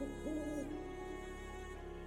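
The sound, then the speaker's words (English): A single, eerie owl shriek rises and holds briefly, then trails off over a steady, hollow drone. It sounds subdued, with no voices present. “I blew my nose and had barely ceased marvelling at the loudness of its reverberations before the piercing, ghoulish shriek of an owl sent the blood in torrents to my heart.”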